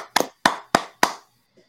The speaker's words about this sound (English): Ladies and gentlemen, our 21-22 NBA champions is the Golden State Warriors. Golden State Warriors, man. So let's give them a clap.